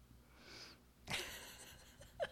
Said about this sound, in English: So sip this one. I'm going to try to sip it.